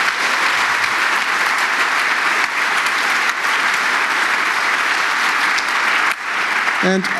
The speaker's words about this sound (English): And I'd like to ask for some applause for them, because I was none of them.